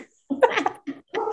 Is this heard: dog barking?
yes